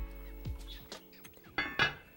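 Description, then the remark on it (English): A metal lid clatters onto a pot of lentils brought to a simmer, a few light clanks followed by two sharper, ringing clinks near the end, fairly quiet with no voices. “I'm going to cover the pot, and I'm gonna cook the lentils for 15 to 20 minutes.”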